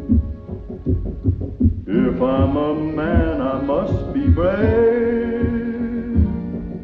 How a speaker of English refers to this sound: That was the opening music to High Noon, released in 1952 by United Artists, and it stars Gary Cooper, among many others that are all excellent actors.